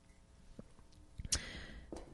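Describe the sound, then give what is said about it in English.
A quiet sip of cold tea from a pink cup: one short wet slurp near the middle, surrounded by faint mouth clicks and soft swallowing noises, with no talking. “Another sip from the pink cup.”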